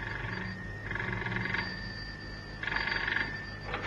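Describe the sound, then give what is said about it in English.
A telephone bell rings in two short, rattling bursts separated by a brief pause, clear, with no one speaking; the phone is in a house in Sloane Street. “As it was, Cannon had hardly put the phone down in the house in Sloane Street when it rang.”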